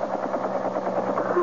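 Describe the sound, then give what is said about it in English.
A police helicopter coming in to land in a parking lot: a steady, fairly loud engine drone with a rapid, even rotor chop pulsing through it, holding constant the whole time. “It's a helicopter. So what? Well, I think it's coming in here.”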